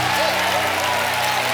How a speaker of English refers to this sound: Come on, all the anointed people, clap your hand. All of the chosen people, clap your hand. All those that were birthed for this assignment, clap your hand. Hallelujah.